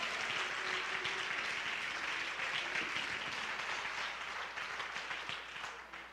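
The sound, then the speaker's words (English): A church audience claps steadily and loudly for several seconds, dense overlapping hand claps with a wash of raised voices shouting praise to God underneath, tapering slightly toward the end. “Come on, if He's ever done anything for you, clap your hands and shout to Him.”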